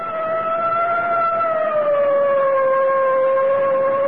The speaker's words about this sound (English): I guess it's time to sound the siren. Here goes.